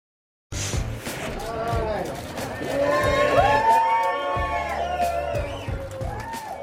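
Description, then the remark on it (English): A large crowd at the Pittsburgh airport cheers and applauds a Steelers quarterback coming off the plane, with overlapping excited shouts and high screams rising above steady clapping; the din starts abruptly and stays loud and continuous throughout. “You saw the video of you coming off the plane, getting applause at the airport, that kind of thing.”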